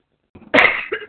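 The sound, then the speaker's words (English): A single loud cough bursts out after a brief soft breath, with a rough, throaty texture that trails off into a second smaller hack at the end. “I'd cough at that too if I had never heard it before.”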